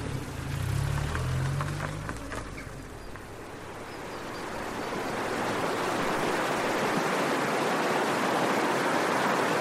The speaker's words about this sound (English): This is the River Fane. This forms the border between County Monaghan and County Armagh, and then up the road there between County Monaghan and County Louth. And where does it go to the sea? Blackrock. Oh, right. In Dundalk Bay.